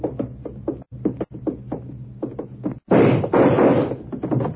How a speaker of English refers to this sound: I got the door open.